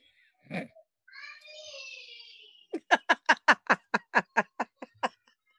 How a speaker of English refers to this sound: Who is screaming bloody murder? That is your niece. She's crazy. I can't. So right now, she knows it's bedtime, so now she's screaming holy horror because she don't want to go to bed.